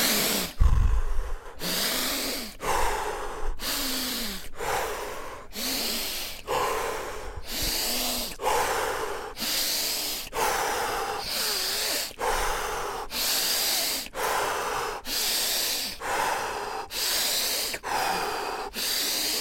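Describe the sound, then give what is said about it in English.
Forceful deep breaths in and out repeat in a quick steady rhythm, roughly one breath per second, each a loud rushing whoosh through the airways, with no talking; a set of ten strong deep-breathing repetitions. “So we do 10 times of deep breathing, in and out, strongly breathing.”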